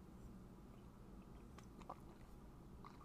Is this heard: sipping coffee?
yes